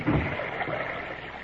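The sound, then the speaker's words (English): A paddle swishes and churns through water as a small boat is paddled from the stern, a steady wash of splashing and trickling with a thicker stroke right at the start. No one speaks. “Well, you get in the boat. I'll take the stern and paddle.”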